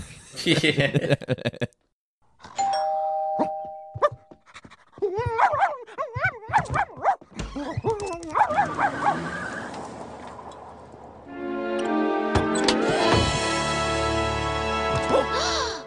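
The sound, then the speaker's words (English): A collie dog gives a few short barks and then high, wavering whimpers and whines, fairly loud, followed by a sustained tonal passage with voices. “Bart then comes across... the collie dog, only 800 of them made”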